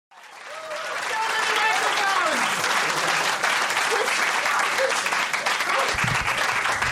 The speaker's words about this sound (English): You kept clapping until I reached the final microphone. This is already the best crowd of the week.